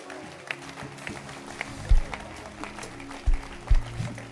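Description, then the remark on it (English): An audience in a church claps their hands, a steady wash of scattered claps with a few heavier low thumps breaking through, at a moderate level and with no talking over it. “Clap your hands.”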